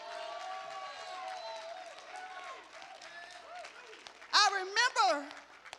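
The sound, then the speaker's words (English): A crowd claps hands steadily in praise of the Lord under a wash of overlapping voices and cheers, with a few loud, rising shouts breaking out near the end. “Come on, give the Lord a hand clap of praise.”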